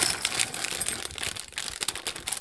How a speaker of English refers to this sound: So the first thing I'm going to do is put 10 ounces of my chocolate chunks into a bowl.